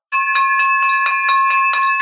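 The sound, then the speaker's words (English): A victory bell is rung rapidly and loudly, about eight quick clangs in two seconds, its bright tones ringing on continuously between strikes, with no voices. “There is your victory bell for the ninja strategy on cash buyers list.”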